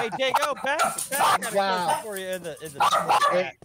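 A dog lets out a rapid string of loud barks and high, whiny yips, several bursts packed into a few seconds with hardly a pause.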